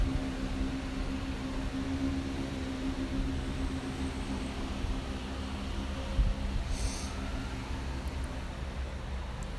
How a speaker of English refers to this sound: White noise.